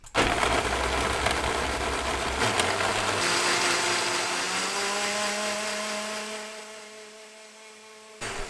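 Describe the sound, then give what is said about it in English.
A blender whirs loudly and steadily for several seconds, pureeing hot mushroom bisque, its motor pitch shifting as the contents smooth out, then winds down and cuts off near the end. “And then I blend it just to smooth it out.”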